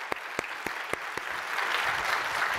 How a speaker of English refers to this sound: Yeah, clap it up.